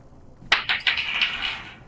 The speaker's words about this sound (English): What are your fucking dice made out of? Concrete? Jesus Christ. I'm rolling them in a bit of tissue paper to dampen it.